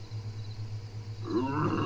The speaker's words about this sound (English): a weird growling noise, and another crush of what sounds like just a rumbling of the earth.